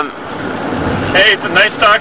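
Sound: car driving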